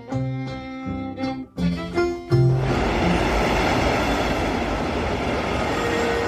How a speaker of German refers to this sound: Wien, Hauptbahnhof. Züge fahren ein. Menschen laufen zu den Bahnsteigen, um ihre Züge zu erwischen.